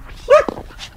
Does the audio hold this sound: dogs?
yes